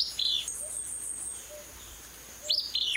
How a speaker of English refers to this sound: Now the raspy Fitzbew song of a willow flycatcher.